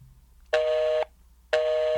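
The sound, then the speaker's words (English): A telephone busy signal: steady, fairly loud tone bursts about half a second long, separated by equal gaps of quiet, repeating in an even on-off rhythm with no voices. “Nope. Still busy.”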